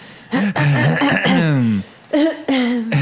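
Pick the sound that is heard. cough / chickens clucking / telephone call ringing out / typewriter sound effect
cough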